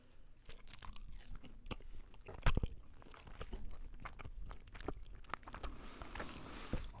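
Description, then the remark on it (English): Crunchy food dipped in honey mustard being bitten and chewed, with a sharp loud crunch early on followed by a steady run of moist, crackling chews for several seconds, no talking. “So I dipped it in my honey mustard.”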